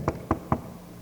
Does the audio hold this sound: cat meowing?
no